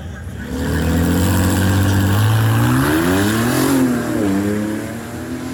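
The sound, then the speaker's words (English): A Dodge Challenger race car, used for Mopar Direct Connection racing to showcase parts and crate engines, revs its engine loudly, its deep harmonic drone climbing and falling in pitch through a couple of throttle swells before settling into a steady rumble. “But this is in a Challenger that is used for the Mopar Direct Connections kind of racing car, where they showcase a lot of parts and crate engines and other things.”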